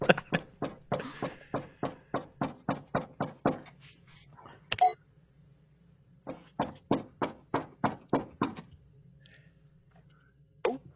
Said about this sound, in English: So he's approaching the door. He's trying the door handle, like trying to actually get in there. Trying to break in.